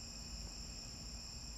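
A cricket trills steadily and without pause, a thin, high-pitched whir that holds fairly faint over a low background rumble. No one speaks.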